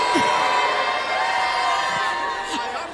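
A large crowd shouts and cheers continuously, many voices overlapping into a loud, sustained roar with occasional higher whoops rising above the din.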